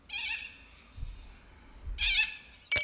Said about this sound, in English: Oh, it's a bird. Can you hear it?